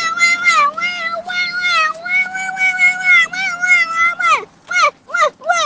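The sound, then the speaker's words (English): A child's voice imitates a toddler tantrum with loud, drawn-out, whiny wails that rise and fall, ending in three short sharp cries, with no other talking. “And here is his excellent toddler tantrum.”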